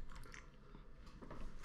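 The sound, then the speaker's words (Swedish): Wet smacking and chewing while eating bread with sour cream and onion, a steady run of soft, crunchy mouth sounds with no talking, fairly quiet but clear. “Det är bara smaskar.”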